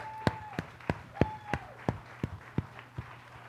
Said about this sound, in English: Would you guys give all of our actors a big round of applause?